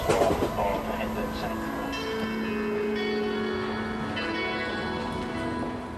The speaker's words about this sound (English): This train is for Hounslow via Brentford. The next station is Wandsworth Town.